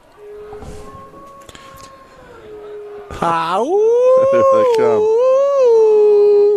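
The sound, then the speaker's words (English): A weak, thin wolf howl: a long, steady note that suddenly swells louder and rises in pitch, then wavers and holds, alone without any talking. “That doesn't really sound like a very intimidating wolf.”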